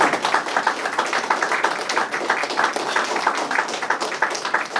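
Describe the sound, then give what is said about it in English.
A crowd applauds veterans at a Christmas holiday-season gathering in a steady, dense wash of many overlapping claps, holding at an even, fairly loud level for the whole stretch without anyone speaking. “So for those in the back of the room, let's give our veterans a round of applause.”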